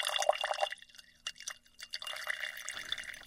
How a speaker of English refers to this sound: All the fluid that's still kind of floating around with pigment, I'm going to pour that into a different jar and save it.